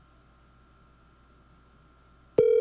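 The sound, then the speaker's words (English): After a couple of seconds of quiet line hiss, a loud, steady telephone ringback tone on an outgoing call abruptly starts near the end and is cut off almost immediately. No one speaks. “I got to start giving people a heads up that I'm calling.”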